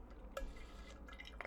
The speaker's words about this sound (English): Did I get a sip of water?